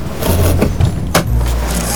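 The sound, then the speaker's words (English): A car door is opened, with a few sharp clicks and a clunk from the latch over a steady low rumble, and no voices. “Hurry, hurry, open my door.”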